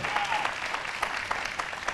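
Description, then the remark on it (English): A church audience applauds one morning as a pastor comes up to the front, many hands clapping in a dense, steady patter at moderate loudness, with a few sharper claps standing out. “Y'all give Pastor Hunter a hand clap as he comes up here this morning.”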